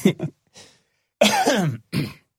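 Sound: cough and throat clearing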